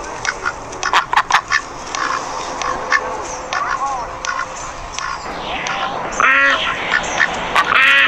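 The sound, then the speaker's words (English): Loud duck quacking fills the whole stretch: a busy flurry of overlapping honks and nasal squawks in irregular bursts, like several ducks calling at once, with a harsh rising squawk near the end. “We have a report from Duck Island coming in on the wire.”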